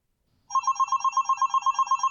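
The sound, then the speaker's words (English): A telephone starts ringing after a brief silence, a loud electronic ring with a rapid warbling trill that continues steadily to the end, with no voices. “He was out on his balcony, feeling the wind rushing through his hair, blowing out all of the residual tension left over from the last assignment, when the phone rang.”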